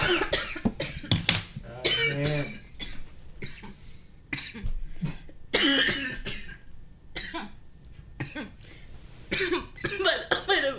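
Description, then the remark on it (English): Repeated harsh, loud coughing fits mixed with bursts of laughter and throat clearing, coming in irregular clusters across the whole stretch with short pauses between. “Just a lot of coughing and laughing.”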